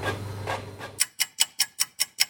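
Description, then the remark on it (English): A photocopier whirs with a low hum and a few rough swishes, then breaks into a quick, steady run of seven sharp mechanical clacks as paper feeds through. No voices. “Oh no, I thought it was chewing it up, that's you.”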